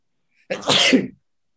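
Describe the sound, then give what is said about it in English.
A single sharp sneeze bursts out suddenly and ends within about half a second, with silence before and after. “Bless you.”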